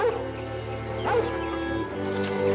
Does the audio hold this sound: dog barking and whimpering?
yes